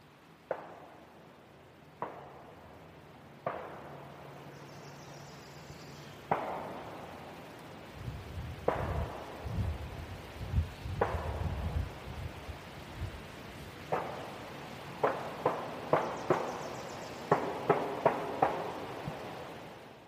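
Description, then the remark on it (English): Distant gunshots, heard from a parked car, crack out one at a time at irregular intervals, each with a short echoing tail, growing more frequent near the end, with a low rumbling background for part of the time. “So I stayed with the car and I was hearing the gunfire go off.”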